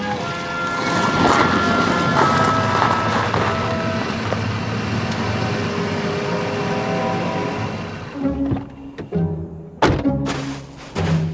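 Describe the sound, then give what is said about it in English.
Farwell's car engine rumbles loudly and steadily for several seconds as the vehicle approaches, then cuts off, followed by a few sharp thumps like doors shutting. No one speaks. “Here comes Farwell's car.”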